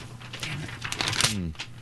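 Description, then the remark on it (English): A sheet of paper is snapped taut, giving a few sharp, crisp papery cracks amid soft crinkling, with a brief low voice sounding near the end. “What do you expect when you snap a piece of paper like that?”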